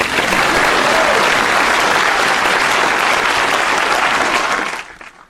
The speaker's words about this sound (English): Please clap.